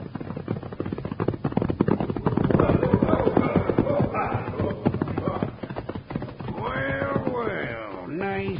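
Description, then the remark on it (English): Several horses' hooves clip-clop in a fast, dense, loud clatter as riders approach. Near the end, a few high, wavering cries rise over the hoofbeats. “He's going to ride right up to us, Bill.”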